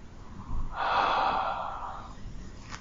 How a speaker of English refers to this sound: So how do we do this? Well, we are breathing.